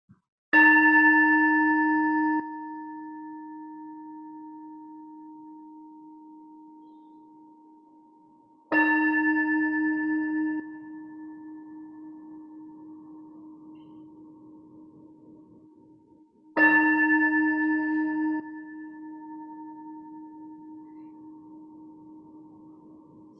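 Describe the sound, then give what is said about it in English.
A single worship bell is struck three times to call people into worship, about eight seconds apart, each strike ringing out clearly and slowly fading before the next. No voices, just the resonant tolling. “And we're going to hear the ringing of the bell calling us into worship.”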